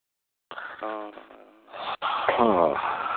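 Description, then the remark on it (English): A voice imitates congested snorting, making a few wet, nasal snorts and wheezy breaths through a blocked nose, with a brief pause between bursts and no words spoken. “Has anybody ever woke up at night, like, with this snorting going on?”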